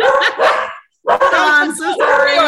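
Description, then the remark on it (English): A dog, one of two, barks repeatedly in short, loud bursts, with a brief pause between barks and voices talking over the noise. “Is that your dog?”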